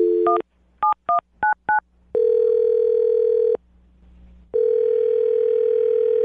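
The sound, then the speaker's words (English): A phone being dialed to call a woman: a quick series of five or so touch-tone beeps at varied pitches, followed by a long steady ringing tone, a pause, then the ring again. No one speaks. “I will dial her phone number right now, and then you can do your Awkward Tuesday phone call, okay?”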